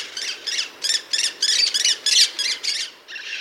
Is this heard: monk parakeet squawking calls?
yes